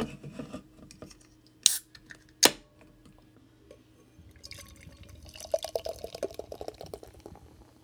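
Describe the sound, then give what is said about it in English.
Two sharp cracks as a 5.3% amber ale is opened, followed by a few seconds of steady, gurgling liquid pouring into a glass. Fairly quiet, with no talking. “Should we crack it open? Yeah, let's do it.”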